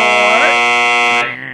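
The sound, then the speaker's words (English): A quiz buzzer sounded manually during a trivia question about the four Madison Lakes: a loud, harsh buzzer blares in one sustained burst for over a second, rich and raspy with a steady pitch, then cuts off abruptly, like a quiz-show wrong-answer buzzer. “doing the buzzer manually.”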